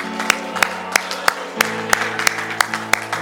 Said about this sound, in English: Oh, go ahead and clap your hand unto the Lord.